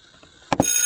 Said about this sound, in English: All right. We are back. And there goes the bell.